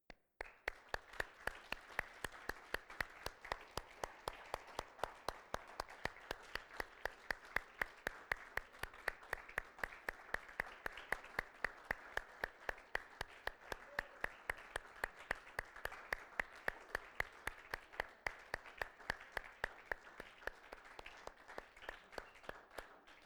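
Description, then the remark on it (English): A large standing audience applauds each other to thank one another for their commitment over the last several years, steadily for over twenty seconds, a dense, even wash of clapping with a regular rhythmic pulse running through it and no voices. “So as we stand, what I'd like you to do is I'd like you just to applaud each other, and just as a way of thanking each other for your commitment to what we've done these last several years.”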